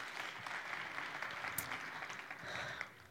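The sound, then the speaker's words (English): A crowd at a chapel claps steadily for the worship team in a sustained burst of applause, dense and fairly loud, for a few seconds before tapering off at the end. “Let's give our worship team a round of applause.”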